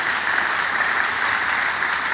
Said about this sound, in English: A good place to clap your hands and to give God a praise.